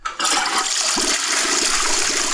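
A toilet flushes loudly, a sudden rushing gush of water that starts abruptly and keeps roaring steadily to the end, with gurgling swirls underneath.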